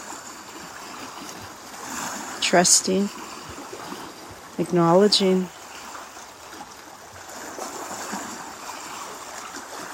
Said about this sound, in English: Sinking into this rhythm of water